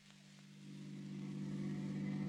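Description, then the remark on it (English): The engine of a new car with a rumble seat hums steadily at a low pitch, growing gradually louder as if revving up or drawing closer, with no voices over it. “Well, how do you like the new car, Mary?”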